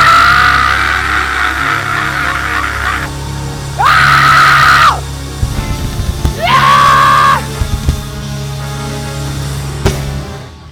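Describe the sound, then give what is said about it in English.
A large crowd screams "hallelujah" together after a count of three, in loud, sustained bursts, three big waves of shouting separated by brief lulls of murmuring and rumble. “When I count to three, everybody scream hallelujah.”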